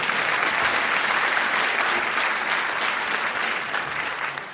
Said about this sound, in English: Well, thank you. You get a round of applause normally for that.